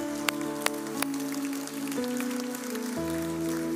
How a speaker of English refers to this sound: Yeah, come on, give them a great round of applause.